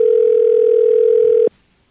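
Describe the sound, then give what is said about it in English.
A single steady electronic ringing tone from an outgoing phone call, clear and fairly loud, holds for about a second and a half before cutting off abruptly into near silence. No one speaks. “Oh, it's ringing. That's a good sign.”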